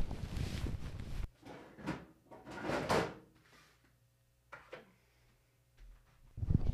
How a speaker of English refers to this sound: I closed all my drawers and I have a thing that I don't close drawers properly. I always leave them open.